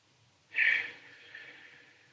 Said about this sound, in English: It might be my dog snoring in the background, my voice.